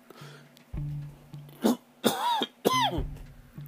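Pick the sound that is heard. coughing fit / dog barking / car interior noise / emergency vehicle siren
coughing fit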